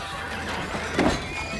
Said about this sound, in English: Nessus jumped on the table, slapping his chest as he neighed.